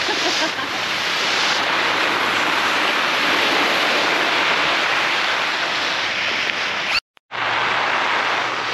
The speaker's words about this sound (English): It's raining.